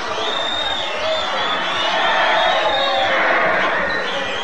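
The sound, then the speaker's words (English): A large crowd roars and cheers continuously, a dense wash of many voices with occasional high whoops and shouts rising above the steady, loud din. “Meanwhile, the crowds gather.”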